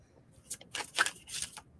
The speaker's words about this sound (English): Okay. This will take me just a second to shuffle and tap in.